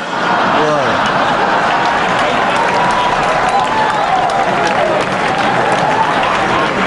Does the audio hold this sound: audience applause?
yes